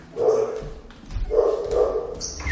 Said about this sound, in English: Oh. There's a dog, it's fine. There's some dogs.